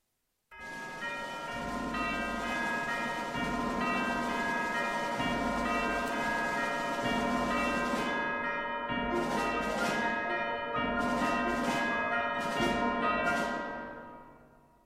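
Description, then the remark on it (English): A large tam-tam, played very delicately, rings softly with a long, shimmering sustain like a very large, low clock bell, layered over a continuous rolling side drum; brighter rattling bursts flare near the end before everything fades out. “Now, I'm going to add in tam-tam, which is played very delicately, so it sounds for all the world like a very large, low clock bell.”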